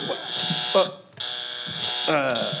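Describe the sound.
A harsh, high-pitched electric buzzer drones steadily, cutting out briefly and then sounding again in a second long blast, with brief bits of voice underneath.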